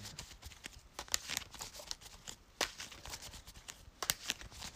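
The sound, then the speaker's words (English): A deck of game cards being shuffled during a card game to draw a new hand, with quick, irregular papery snaps and riffling clicks scattered across a few seconds, fairly quiet and with no talking. “Let me get a quick shuffle and see if the second go is best.”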